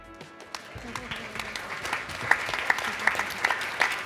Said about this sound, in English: He just graduated from high school, so of course, we started with a good round of applause for this accomplishment.